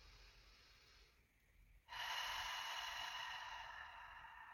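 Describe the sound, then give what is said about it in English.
An airy breath: a softer stretch of air, a brief pause, then a long, loud rush of breath that holds steady to the end, as a person breathes in deeply. No one speaks. “Some other things that you can do is like placing both of your hands over your heart and breathing in nice and deep into that.”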